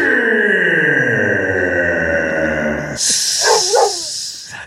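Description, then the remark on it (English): A dog barks loudly, a few sharp barks near the end following a long, steady whining tone, with no one talking. “You've trained my dog to bark at you.”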